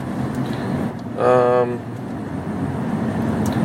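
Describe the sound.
A steady low rumble of road noise from inside a car being driven in a little traffic, with a brief tonal, voice-like sound rising over it partway through.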